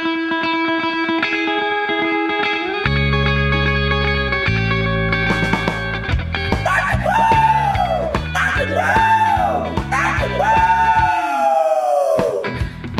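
Loud, distorted rock music with heavy bass, then three rising-and-falling crowing yells of "Rock and roll!" from roosters on a farm early in the morning ring out forcefully over the band.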